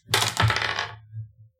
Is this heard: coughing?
no